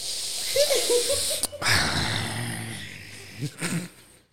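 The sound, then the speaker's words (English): A person imitates heavy, wheezy breathing after climbing stairs, with raspy drawn-out inhales and exhales broken by short squeaky whistles and a brief pause. “That's how I was breathing coming up them stairs.”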